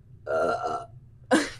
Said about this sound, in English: I'm gonna burp every single podcast.